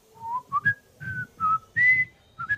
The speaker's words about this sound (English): As he gets closer to you, you can hear him whistling a jolly tune. And what does it sound like?